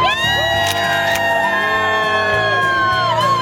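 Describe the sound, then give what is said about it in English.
A large crowd outdoors in the rain shouts and cheers continuously on a Thursday morning at the Today show, with overlapping whoops and raised voices forming a loud, dense roar throughout. “Let me tell you about that crowd we have out there. They're out there in the rain.”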